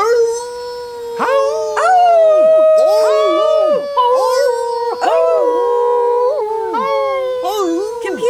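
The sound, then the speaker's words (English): Several voices imitate howler monkey calls, loud, with long overlapping howls that rise, dip and waver continuously for several seconds without any spoken words. “Can you also howl like a howler monkey?”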